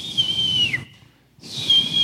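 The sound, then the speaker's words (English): A person whistles two sustained, fairly loud high notes separated by a short silence outside a tent, a voice imitating a whistle with no talking over it. “I hear whistling outside the tent.”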